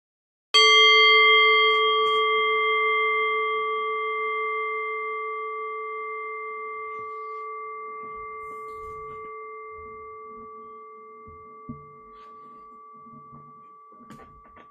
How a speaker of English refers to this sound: And as a way of connecting to the present moment experience, I'll ring the sound of the bell. The invitation here is to rest awareness on the decay of the bell. Allow the bell to guide your awareness into stillness.